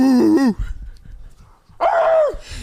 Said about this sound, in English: A little rabid dog in the back.